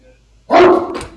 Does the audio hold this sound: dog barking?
yes